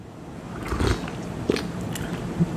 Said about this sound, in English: But I'm gonna have my first sip of coffee for the day, and hopefully you can hear the entire process of it and see it.